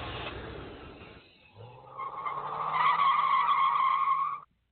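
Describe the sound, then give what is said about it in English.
A car's tires screech in a sustained, rising squeal as the engine revs and the vehicle peels away from an auto show that is packing up, loud before cutting off abruptly. “Is that the car driving away? Yeah, that's the auto show packing up and leaving, and then in come the nerds.”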